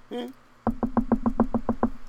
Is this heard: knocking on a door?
yes